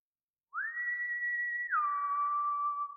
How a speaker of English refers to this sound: Out of nowhere, he suddenly breaks the silence with the most terrifying sound I've ever heard. He whistled.